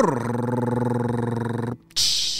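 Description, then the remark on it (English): A voice imitates a drum roll with a steady, rapid rolled-tongue trill lasting nearly two seconds, then breaks off into a short silence before a bright, hissy crash-like burst. “And next up, drum roll, please.”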